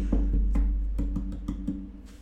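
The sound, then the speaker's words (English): Around eight hollow knocks on wood, tapped in a quick, slightly uneven rhythm with dull low resonance, fairly loud and with no talking over them. “That's wood. You hear that?”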